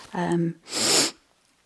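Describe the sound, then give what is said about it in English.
A single loud sneeze from a person with a cold: a short voiced "ah" build-up followed by a sharp, breathy burst, then quiet. “I encourage us all to wash our hands frequently and cough and sneeze into our elbow.”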